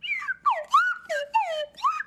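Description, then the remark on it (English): A slide whistle plays a short, bouncy version of a theme song, about six swooping notes, each gliding up or down in pitch, clear with no one talking. “The slide whistle version.”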